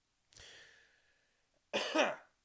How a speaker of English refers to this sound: Excuse me. Not editing that out. We're just going to keep pushing forward. Pretend like you did not hear me just cough on camera.